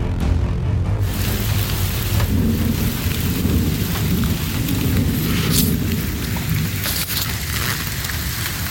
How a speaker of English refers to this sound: A little light rain today. A little thunder in the distance.